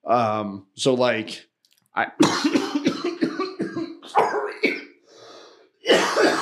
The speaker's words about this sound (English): Sorry about that. I'm dying of allergies. Ooh, got lightheaded from that cough.